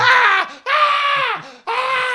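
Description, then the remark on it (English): A voice imitates a man screaming in pain from spikes driven through both his legs: three loud, drawn-out anguished cries in quick succession, strained, with brief gasping gaps between them and no other talk. “Probably 10 different spikes planted through both of his legs, and he's screaming in pain.”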